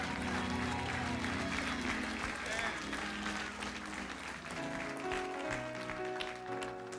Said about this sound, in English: Somebody stand to your feet and give him a great big clap offering of praise.